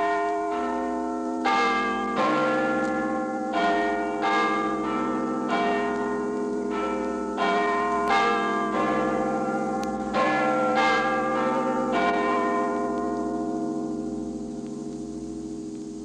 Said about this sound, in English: Big Ben, timekeeper for the world.